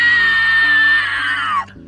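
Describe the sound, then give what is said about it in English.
A loud, piercing shriek from a harpy holds steady for about a second and a half, then slides downward in pitch and cuts off abruptly. It stands alone, harsh, with no talking. “She shrieked again, louder than ever.”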